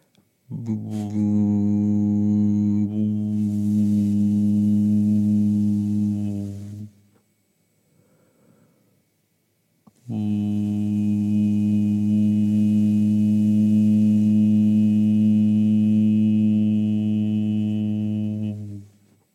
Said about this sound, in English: So keeping that hand there and placing the other hand that you have free on the back of the neck. And when you hum, just really feeling the vibrations of that into the hand, rippling through the arm, into the whole physical body.